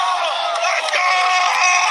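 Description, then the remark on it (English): A loud, dense stadium crowd roars and cheers continuously at a Yankees playoff game, with a man screaming "Let's go!" rising out of the noise, all sustained and energetic with no pauses. “I found a video. This is like me screaming.”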